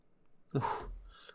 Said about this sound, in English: I'm breathing heavy because it hurts my chest. I'm breathing heavy because it hurts.